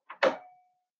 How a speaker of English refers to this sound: Suddenly, with the loudness of a cannon, a door snicked open.